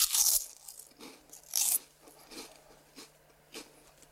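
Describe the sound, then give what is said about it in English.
Crunchy snack bites from a just-opened packet: two sharp, loud crackling crunches, followed by a steady rhythm of softer chewing crunches, with no talking. “I'm going to bite it, I'm going to chew it, okay?”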